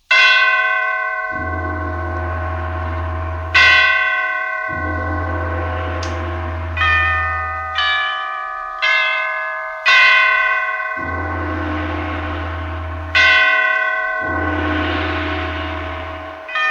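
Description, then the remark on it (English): The great church bells of St. Petersburg toll a requiem after the death of Catherine the Great. They ring in a slow, uneven sequence, each loud strike fading before the next, with a deep resonant hum lingering beneath the overlapping peals. “Catherine the Great had just died, and the great bells of St. Petersburg tolled their requiem.”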